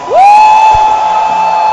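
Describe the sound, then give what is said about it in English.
A loud, sustained shout rises in pitch and holds steady, with the noise of a church audience behind it and a few faint hand claps scattered underneath, as the audience shouts and claps for Jesus while welcoming a bishop. “A shout and a hand clap.”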